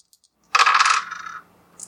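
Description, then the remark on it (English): Dice clatter and tumble across a hard tabletop in one quick burst that trails off into a few softer rattles before settling, followed by a faint small tap. The roll comes in under 8. “Well, it rolled less than 8.”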